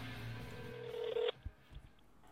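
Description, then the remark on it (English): Phone dialing tones play over a speakerphone, a steady electronic tone holding for about a second before cutting off abruptly, followed by a few faint clicks and a quiet line hum. “Do do do, calling Chris on speaker.”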